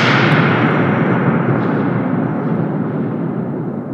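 Inside a closed tank, a mallet smacks two metal handles on the wall once, loudly, setting off a deep, roaring resonance that washes broadly across the spectrum and slowly fades over several seconds, with no voices.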